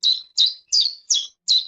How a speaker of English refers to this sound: The first second of that clip is real, and the rest is AI-generated. So somewhere in the third cheep, AI takes over and starts to speak chiff-chaff.